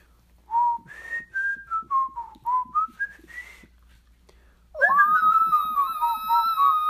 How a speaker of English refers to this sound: That's how I can whistle. That's kind of like a shrill... a shrill whistle.